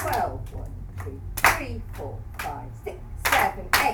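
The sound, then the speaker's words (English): Flamenco palmas: sharp, bright hand claps land in a steady, even rhythm, with louder accents on beats 12, 3, 7, 8 and 10, while a voice talks along over the clapping. “So we're going to do accents 12, 3, 7, 8 and 10 with the palmas, with the clap.”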